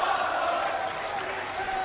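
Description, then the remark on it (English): A large crowd at Key Arena in Seattle during WWE Monday Night Raw roars and chants "This is awesome" in a dense, continuous wall of voices, loud and steady throughout with no single speaker standing out. “And the This Is Awesome chants ringing through the Key Arena.”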